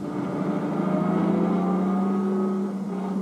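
A car engine rumbles steadily, a low continuous drone with a slight rise in pitch as the car rolls forward and pulls up in front of a cabin.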